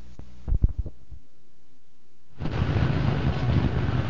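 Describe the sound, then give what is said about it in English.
A few low thumps, a brief lull, then a steady rumble of idling car engines in a traffic jam at 7:30 in the morning, with no voices. “Well, here we are again, 7:30 in the morning and sitting in another traffic jam.”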